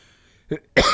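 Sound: cough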